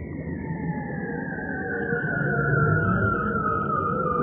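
A bearded seal's long underwater call, recorded with a hydrophone, glides slowly downward in one continuous, eerie whistling tone, fairly loud and unbroken, over a low rumbling wash of background noise with no talking.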